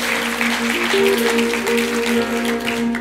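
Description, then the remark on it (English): An audience claps steadily to thank God for about three seconds, a dense, fairly loud wash of many hands, with sustained keyboard or organ tones holding underneath. “Can you clap your hands and thank God for that?”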